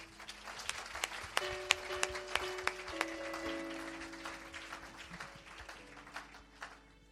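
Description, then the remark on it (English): An audience applauds steadily, a dense wash of many hands clapping with a few sharp, louder claps standing out, while some sustained tones hum underneath throughout. “And I just want to say, a round of applause for.”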